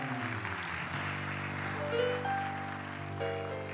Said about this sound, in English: All right, let's give our disciples a big hand clap.